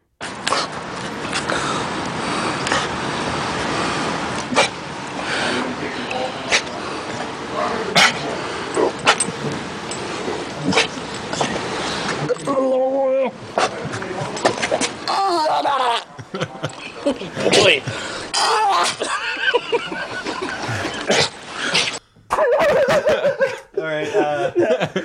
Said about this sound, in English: I think it was just a dog throwing up. Yeah, sorry. I think that was just... I labeled it wrong. I labeled it wrong in here. Okay. I think that was actually just the audio of a dog throwing up.